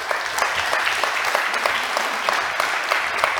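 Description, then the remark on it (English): A crowd claps steadily in sustained applause, a dense wash of many hands, fairly loud throughout with no voices standing out. “round of applause for Tony”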